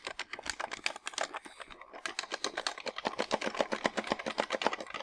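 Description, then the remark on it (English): Rapid clicking of plastic guitar game controller buttons, tapped in fast, busy bursts with a brief lull early on, then a steady run of crisp clacks to the end. “And the buttons on the Rock Band did make some noise. Because you're pressing a button.”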